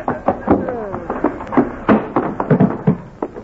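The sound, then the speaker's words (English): A man is knocked through a screen door in a fistfight amid a rapid, irregular flurry of loud thuds, whacks and knocks, like a scuffle ending in a splintering tumble, with brief vocal sounds mixed in. “you knocked him plumb through the screen door.”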